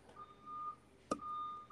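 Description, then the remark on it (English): A garbage truck's reversing beeps, two long steady high-pitched tones separated by a brief sharp knock, with low engine rumble underneath and no talking. “Yeah, sorry about this garbage truck behind me. This thing's loud.”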